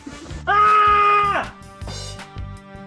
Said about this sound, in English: She's going to scream and then she'll come right back.